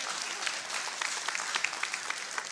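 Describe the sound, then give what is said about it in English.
A crowd applauds Westside's state championship win, with many hands clapping in a dense, continuous patter that stays fairly even throughout and never pauses. “But they, okay, yeah, that's a good part to clap.”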